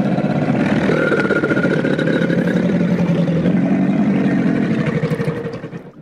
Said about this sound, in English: Yes. This is an alligator.